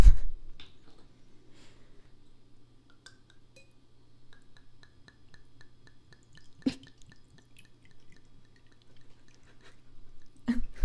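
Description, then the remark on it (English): Drink pours from a twist-top bottle into fancy Gatsby-style glasses in quick, evenly spaced glugs and drips over a low steady hum, with a couple of sharper glass clinks. “Sounds like I'm pouring this whole damn bottle out.”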